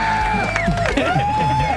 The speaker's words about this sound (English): A casino, Turtle Lake. This crowd is unbelievable. Work themselves into a frenzy.